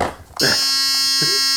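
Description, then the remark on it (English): A loud, harsh game show buzzer blares suddenly and holds steady for over a second, a flat droning tone with brief voices cutting in over it. “I'm bringing the buzzer out only for Riverdale.”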